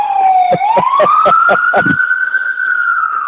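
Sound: ambulance siren passing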